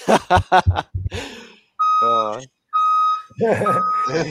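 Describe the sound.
A dump truck's warning beeper sounds two long, steady, high-pitched beeps, fairly loud, between bursts of people talking, as the truck unloads; the tone carries on faintly beneath the voices afterward.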